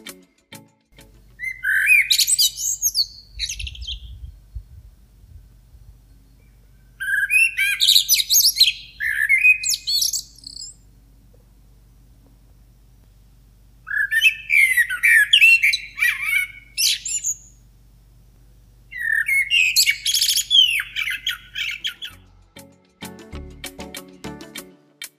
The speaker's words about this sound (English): They are also skilled mimics and can incorporate human sounds as well as other bird sounds into their song. But the most familiar tune is the one we will play for you now, a lilting, joyful affair with deep contrast and cascading notes.